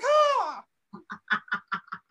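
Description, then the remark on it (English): A person imitates a bird: one long, loud, harsh squawk, then after a short pause a quick, evenly spaced run of about seven short clucking calls. “I feel like I'm on a fucking acid trip or I'm doing really good bird over here.”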